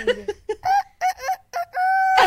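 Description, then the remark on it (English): A person imitates a clucking chicken with a string of short, choppy bursts that build into a drawn-out, high squawk at the end, loud. “I got my inner chicken. Inner chicken comes out.”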